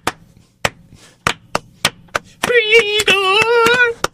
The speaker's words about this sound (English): All right, let's add a little bit of gospel to it. Come on, kids. Clap your hands.